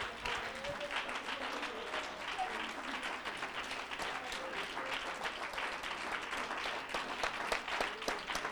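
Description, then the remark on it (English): A church audience stands and claps together in sustained applause of praise to God, a dense, steady patter of many hands that stays loud and even throughout with no pauses, along with faint crowd murmur beneath. “If you want the Word of God, why don't you stand with me this morning and give God a hand clap of praise and thank Him for the Word.”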